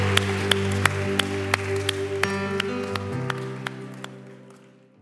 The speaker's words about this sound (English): Can we give these six individuals that raised their hand a huge round of applause? Yeah, what an awesome moment. Come on, Foundation Church, let's make some noise.